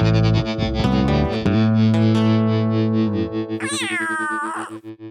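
A processed, distorted cat meow sweeps upward in pitch over a sustained electronic tone, ending in a bright, wavering yowl, a synthetic transition sting with no talking.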